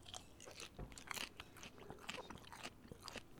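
Crisp crunching as someone bites into double-fried falafel and keeps chewing, a steady run of sharp, brittle crackles with no talking.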